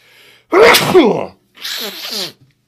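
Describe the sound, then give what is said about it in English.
A loud sneeze from a person with allergies bursts out after a faint breath, followed about a second later by a second, slightly quieter and breathier sneeze; no one speaks. “I'm going to sneeze.”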